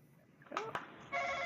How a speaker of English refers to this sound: hit that buzzer. Let me get a taste of what that sounds like.